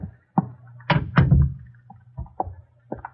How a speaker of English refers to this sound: Close the door